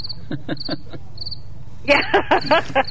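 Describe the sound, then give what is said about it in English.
Crickets chirp in a steady, repeating pattern of short high trills, growing louder and busier in the final second, with no voices present. “Crickets.”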